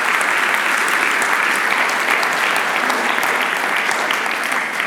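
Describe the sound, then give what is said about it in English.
A church audience claps together in a clap offering to God, sustained, dense applause, a steady loud wash of many hands with no pauses or spoken words, running the whole length. “Let's give God a clap offering for all that he's doing amongst us.”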